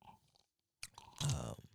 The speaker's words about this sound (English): She is continuously sipping heavily with an open mouth. That gulp was just loud. It was, wasn't it? Oh my God. It was a gulp.